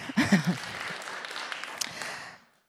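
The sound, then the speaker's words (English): An audience claps at the speaker's request in a short round of clapping, a dense, even patter that holds for about two seconds before fading out, with a brief voiced sound at the start. “I can't clap when I'm holding a mic. You'll have to clap for me.”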